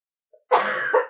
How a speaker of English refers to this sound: Immediately start coughing.